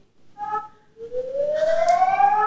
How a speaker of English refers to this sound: For a moment there, it sounded like a cat. This alarm is called the alarm signal, which means that you have to move to your closest shelter immediately. Yeah. In case of bombings or in case of earthquake.